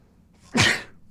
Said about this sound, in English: Yep, first time I've sneezed on the microphone right there.